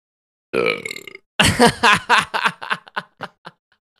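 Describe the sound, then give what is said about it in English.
A loud, drawn-out burp rumbles for about half a second, bringing up a little breakfast sausage, followed by a burst of chuckling and snickering laughter that trails off in short bursts. “A little bit of breakfast sausage came up on that one.”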